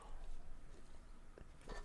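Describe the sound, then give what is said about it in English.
A quiet sip of a cherry-flavored fizzy drink: faint mouth sounds over a low hum, then a couple of short, wet slurping clicks toward the end, with no talking. “let me just take a quick sip of my cherry flavored bubbly.”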